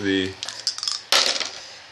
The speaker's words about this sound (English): And the dice agree. The dice are not being kind tonight.